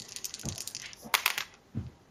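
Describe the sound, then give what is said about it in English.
Dice are rolled to investigate a mystery in the train station, rattling and clattering across a hard surface in a quick burst of bright, clicking impacts, with a few low thuds as they tumble and settle on a six. No one speaks. “Come on, dice, don't fail me again.”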